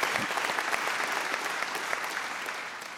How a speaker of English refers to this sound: I would just love to, if we could applaud for this example right now for Imprinting Succession and our great worship team.